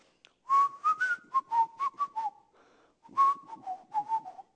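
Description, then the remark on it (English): Someone whistles a familiar tune, two short melodic phrases of quick bright notes separated by a brief pause, with no talking. “He would come behind you and just while you're working, and he would whistle.”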